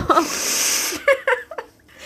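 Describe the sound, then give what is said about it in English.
A person who has been crying blows their nose: a long, hissing blow lasting under a second, followed by a few short, choppy voiced sniffs or shaky laughs. “I'm going to blow my nose.”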